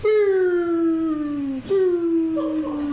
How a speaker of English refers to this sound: That's the retreating siren.